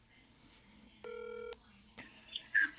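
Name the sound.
telephone dialing tones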